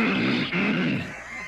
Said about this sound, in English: You want to clear your throat again? I'm with you. You want to really, let's really bring it up this time.